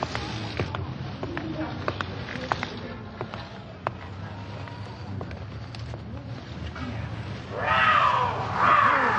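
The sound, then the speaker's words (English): A cougar in a store lets out two loud, harsh snarling roars near the end, after several seconds of low rumbling background noise with scattered faint clicks. “No cougar will attack a full-grown man except by mistake.”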